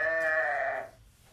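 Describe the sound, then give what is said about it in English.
A single sheep bleats once, a loud, wavering nasal cry lasting under a second before it cuts off, with no one speaking. “There's that sheep in your room.”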